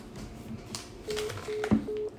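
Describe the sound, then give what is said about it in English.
Three short, steady telephone dialing tones of a call placed by the hosts of the radio show Bring Your Own Chair, on their third try of the night, sound in an even rhythm, each a flat mid-low beep, with a brief click between the last two over faint background hiss. “hit the call button”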